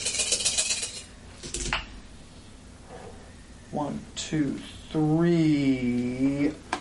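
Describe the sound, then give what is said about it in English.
A handful of dice, 10 failed dice being rerolled, clatter and rattle across a hard surface for a couple of seconds, followed by a pause and then a person speaking in a drawn-out voice. “10 dice that were failures, so I reroll all of those, right?”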